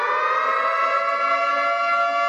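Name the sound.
air raid siren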